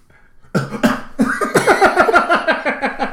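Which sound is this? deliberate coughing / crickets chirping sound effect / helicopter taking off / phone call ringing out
deliberate coughing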